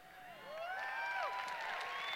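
An audience breaks into steady clapping, a dense wash of hand claps mixed with a few rising and falling whoops or whistles, holding at an even level throughout.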